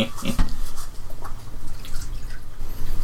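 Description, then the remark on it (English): Liquid pours steadily, a continuous splashing trickle with a few brief gurgles and drips near the start, with no voices. “It's pouring a liquid.”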